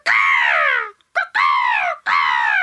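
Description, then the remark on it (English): A person imitates a bird with three loud, harsh calls, each sliding downward in pitch. A short clipped squawk sits between the first and second, with brief pauses in between. “That sounds just like a bird. I'd say that's an Australian bird.”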